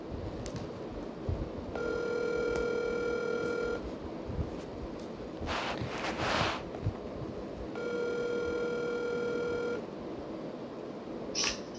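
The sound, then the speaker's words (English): A phone line rings twice, each long buzzy tone lasting about two seconds with a pause between, heard over a faint hiss with a brief noisy burst between the rings. “So let's get him on the phone here.”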